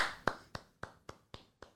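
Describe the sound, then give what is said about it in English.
Six sharp hand claps in a quick, steady rhythm, the first the loudest and the rest slightly softer, with no talking underneath. “I don't think they expect to win the East, so I'm clapping.”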